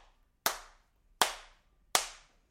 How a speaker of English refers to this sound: From behind him, he can hear clapping.